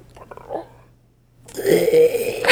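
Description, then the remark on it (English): A man who has fallen asleep snores: a faint, low rumble, a brief pause, then one long, loud, rasping snort with a rough, buzzing texture that swells and holds until the end. “If you listen, you can hear him snore.”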